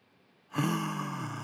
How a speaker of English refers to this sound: You yawn. So your body is actually forcing you to inhale more air so that your brain can actually receive that oxygen that it needs.